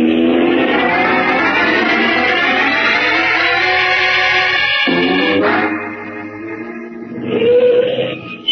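A car engine roars, its pitch climbing steadily as it accelerates, then dropping sharply and rising again as the car speeds through a roadblock. No voices, just loud motor noise.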